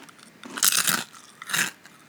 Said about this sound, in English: … took a bite of that, didn't eat the whole thing. It's about a 2-inch chip.